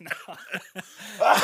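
A few short, breathy coughs in quick succession, moderately loud, followed by a rasping, strained vocal sound.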